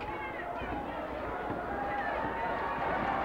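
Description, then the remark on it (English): A steady, low murmur of a wrestling match crowd in an arena, a continuous indistinct hubbub of many voices with no single speaker standing out. “Well, there's a bit of noise there by the crowd, but they've been dead this whole match.”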